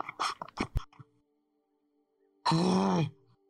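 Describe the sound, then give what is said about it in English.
A voice imitates pained gasping: a quick run of sharp, ragged breaths, a pause, then one loud, drawn-out strained groan, with no other talking. “Just like gasping.”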